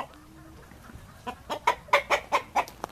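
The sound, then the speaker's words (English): Chickens cluck in a chicken coop in Zimbabwe in a quick run of about seven short, throaty calls after a quiet start, moderately loud against a soft background hum. “She spends her mornings in the classroom and her afternoons in the fields or chicken coops.”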